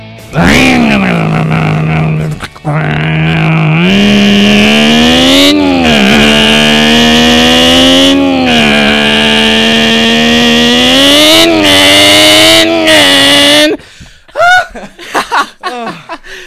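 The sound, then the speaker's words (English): On the Kidz and Karz show on Voice America Kids, a person makes a long, loud vocal impression of some type of engine, a buzzing drone that climbs in pitch in stepped surges as if shifting gears, followed by a brief burst of laughter and talk. “That was a little impression of an engine. Some type of engine.”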